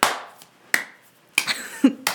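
Four sharp hand claps at an uneven, unhurried pace, each with a brief ringing tail, plus a dull low thump near the end. No one speaks.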